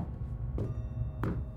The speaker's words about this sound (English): First, there were footsteps.